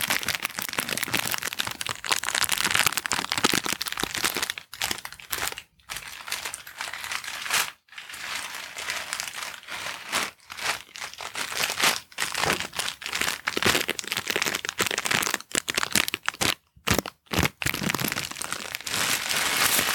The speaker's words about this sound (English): And now next I have the gift wrap paper.